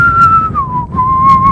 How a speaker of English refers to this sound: Welcome to the world's premier whistling podcast.